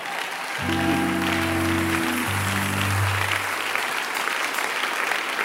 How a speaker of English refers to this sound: I'm waiting for you to clap better.